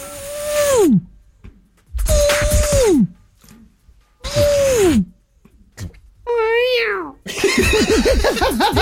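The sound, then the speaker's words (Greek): A person mimics a cat, giving three drawn-out falling meows with short pauses between, then a wavering, warbling yowl and a final stretch of rapid vocal trills, loud. “Πάλι τη γάτα κάνεις.”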